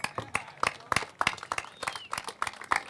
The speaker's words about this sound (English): More people should clap, but okay.